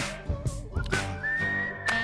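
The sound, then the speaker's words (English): A bright whistled melody rides over a song's backing track, holding a long, steady note in the second half while sharp claps and beats punch through underneath. “this whistling reminds me of the … cash-in”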